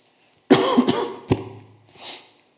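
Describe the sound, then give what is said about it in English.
A loud cough fit: several harsh bursts in quick succession, followed by a softer breathy exhale as it trails off. No one speaks. “I wouldn't do that, either like slam the microphone or cough.”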